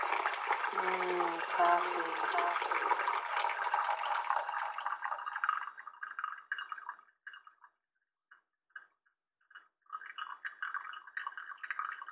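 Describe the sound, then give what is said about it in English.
Coffee drips and gurgles from a brewer into a cup: steady hissing, bubbling flow at first, then fading to scattered sputters and drips before the gurgling picks up again. “The drip of coffee.”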